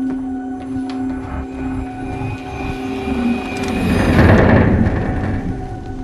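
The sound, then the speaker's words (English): A whooshing transition sound: steady low groaning, creaking tones like a wooden ship's timbers, with a rushing swell that builds and peaks near the end before easing off. No talking. “So it definitely sounds like a wooden creaking ship.”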